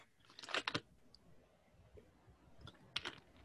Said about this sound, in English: Oh, the one thing I wanted to tell you about was that I gotta take a sip of water.